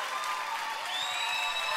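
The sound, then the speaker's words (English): A big audience claps steadily in a dense, sustained wash of applause, with whoops and cheers rising through it, loud and continuous for the whole stretch. “That's what you say when they're screaming too long, right? Yeah. What a crowd.”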